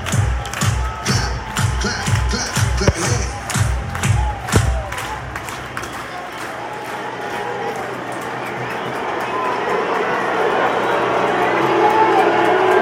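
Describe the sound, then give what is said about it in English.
A big baseball stadium crowd at a Dodgers Wild Card game, in the bottom of the 7th inning with 2 outs, claps in a steady rhythm with chanting voices, then breaks into a broad, sustained cheer that swells louder toward the end. “Clap your hands. Clap your hands.”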